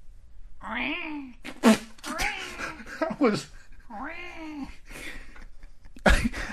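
A baby girl cries upstairs in long, wavering wails, several drawn-out bursts with short pauses between them, sounding somewhat muffled, with a few sharp knocks or thumps mixed in.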